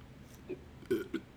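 A weak, half-hearted burp comes out as three small throaty croaks in quick succession, short and fairly quiet, with no talking over them.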